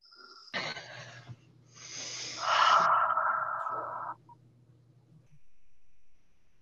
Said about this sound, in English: So focus on your breathing. Let's do that. Let's just take a deep breath, everybody. Just take a deep breath.